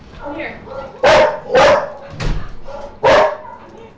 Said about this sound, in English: Those dogs are coming back. They are. Yeah. Your hunting dogs have reappeared.